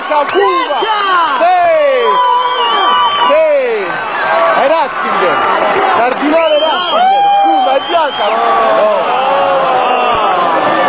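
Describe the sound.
A huge outdoor crowd of about 40,000 pilgrims in St. Peter's Square cheers, shouts and chants Il Papa as smoke billows from the chapel chimney during a papal election, a dense, loud roar of many voices that rises and dips briefly before swelling again throughout.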